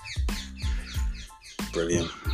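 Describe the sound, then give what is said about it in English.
A bird calls in a quick series of short, chirpy bursts, roughly three per second, fairly loud, with no talking over it. “Chirping.”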